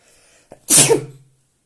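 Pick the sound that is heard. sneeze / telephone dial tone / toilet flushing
sneeze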